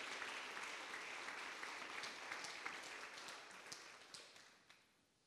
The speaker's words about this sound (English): Come on, give Him the best clap of praise to the Lord. Amen.